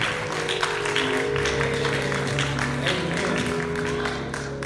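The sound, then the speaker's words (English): An audience gives a hand clap of praise to God, a dense, steady burst of applause lasting several seconds, with a sustained low musical tone humming underneath. “Will somebody give him a hand clap of praise?”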